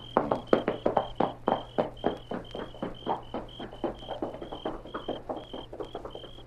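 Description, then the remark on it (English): Steady, rapid hoofbeats of a horse clatter in a continuous trotting rhythm, holding roughly even loudness with a faint high ringing tone running underneath. No one speaks. “Leave Silver right there and take your horse with you.”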